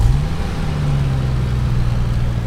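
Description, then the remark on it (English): A car engine hums with a steady, low drone from inside the moving vehicle, loud and continuous throughout with a slight shift in pitch, and no voices. The car has the licence plate Chad 4LF. “Gotta tell ya, does my head in a bit having a Chad in the car, considering I play the dude Chad on Chad a Fallout 76 podcast.”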